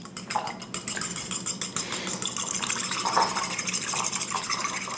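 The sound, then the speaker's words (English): A fork beats an egg in a bowl, whisking rapidly against the side and making a steady stream of quick, clicking and sloshing strokes that stay fairly even in loudness throughout, with no talking. “Okay, now I'm going to beat up the egg with my fork.”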